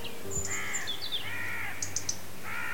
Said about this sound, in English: Listen to this autumnal chorus in our valley. The migratory birds are gone for the winter, as they must.